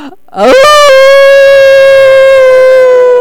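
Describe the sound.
Human voices imitate a wolf howl: a loud tone swoops up in pitch, then holds a long, steady note for nearly three seconds without fading.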